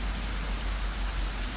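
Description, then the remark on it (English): Steady rain falls around a pavilion in Lower Allen Park in a continuous, even hiss with a low rumble underneath, moderately loud with no voices present. “I'm sitting down here under a pavilion, watching the rain.”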